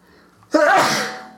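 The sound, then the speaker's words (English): A single loud sneeze bursts out after a moment of near silence, its harsh blast trailing off over roughly a second. “Bless you.”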